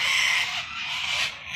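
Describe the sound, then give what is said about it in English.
A loud, dense chorus of harsh, raspy screeches from a large flock of hundreds of sulfur-crested cockatoos, white-bodied with yellow crests, feasting on a pond, overlapping continuously with no pauses and no talking. “They have a big white body, they have a yellow crest, and they seem to be having a very big feast on a pond.”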